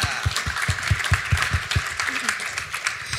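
A brief round of audience applause, a dense crackle of many hands with a few steady, rhythmic claps standing out early on before the clapping loosens and thins toward the end.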